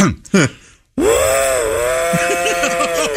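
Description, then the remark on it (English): A voice doing a singer's impersonation mimics a train, holding a long, steady, whistle-like wail that runs to the end, with quick rhythmic chugging pulses underneath in the final second, after a few short vocal bursts and a brief pause. “… was famous for making the sound of a train.”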